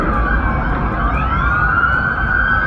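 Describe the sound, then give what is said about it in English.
Loud police sirens wail continuously over a heavy rumble of traffic as at least 30 police cars pass by, their rising tones overlapping with no one talking. “2, 4, 6, 8, 10, 12, 14, ah, holy fuck, there's lots of cop cars, at least 30 cop cars total.”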